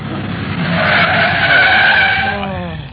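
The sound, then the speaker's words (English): A taxi engine roars as its tires screech in a long, loud skid in city traffic, the squeal swelling and then fading as the taxi slides to a halt at 167 Lausanne. “My name may be Speed, but I don't like it this fast. Oh, driver, slow down.”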